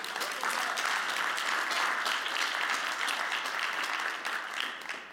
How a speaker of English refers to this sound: I was going to say give yourselves a round of applause